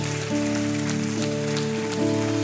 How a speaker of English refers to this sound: Come on, can we give them a round of applause, church?